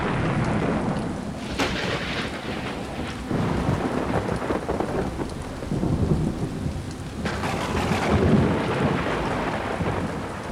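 Loud thunderclaps with lightning crack and rumble over steady heavy rain, with two sharp strikes standing out amid continuous, powerful rolling thunder.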